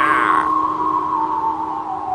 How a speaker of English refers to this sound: As the wind blew, Thomas heard the whistling and wailing sound again, and he began to feel scared.